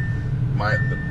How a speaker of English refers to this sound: My car's buzzing because I got my dog with me, Nick.